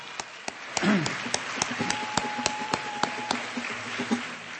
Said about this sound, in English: Let's have a round of applause again.